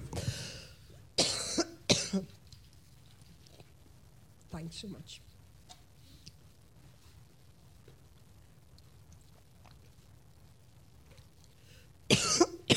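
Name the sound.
coughing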